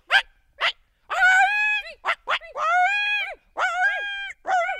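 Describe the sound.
Two people's voices imitate a coyote (also called coy dog or coy wolf) call: a few sharp, breathy yips followed by several loud, high, wavering howls with rising and falling pitch, some overlapping, in quick bursts.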